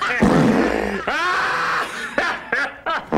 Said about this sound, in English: There they are. And really, after that, the Hollywood Edge farting party was over,